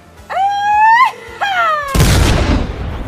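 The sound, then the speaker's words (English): A loud, rising Mexican grito yell with strong harmonics, a brief break, then a second shorter falling cry, abruptly cut off by a heavy booming cannon blast that rumbles and fades. “And then another grito gets yelled.”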